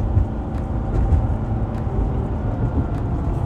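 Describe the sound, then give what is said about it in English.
A truck driving past, its deep engine rumble holding steady and fairly loud throughout, a continuous low drone with a faint hiss above it and no voices. “This truck is trying to be in the way.”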